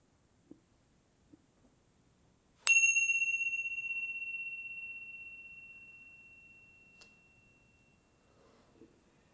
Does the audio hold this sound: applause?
no